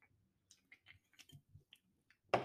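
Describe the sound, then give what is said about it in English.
A quiet series of small wet mouth clicks and gulps as someone takes a little sip of beer, ending in a sudden louder clunk or exhale. “I'm gonna take a little sip of beer.”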